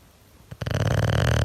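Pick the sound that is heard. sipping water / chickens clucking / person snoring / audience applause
person snoring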